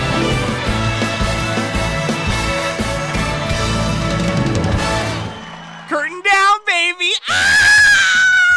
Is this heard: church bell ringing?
no